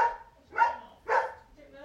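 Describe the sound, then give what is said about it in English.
A dog barks three times in quick succession, sharp barks about half a second apart, with nobody speaking over them. “Hang on a minute, I'm gonna have to get the dog shut up.”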